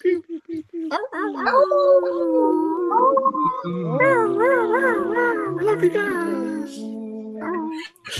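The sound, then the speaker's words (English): Several people howl together imitating wolves, overlapping long rising and falling cries with wavering pitch, loud, filling the whole stretch before trailing off near the end. “I love how we all just like intuitively just like wolf howl and stuff like that.”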